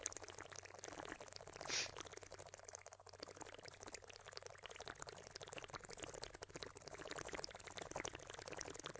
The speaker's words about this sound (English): I was having a drink of water.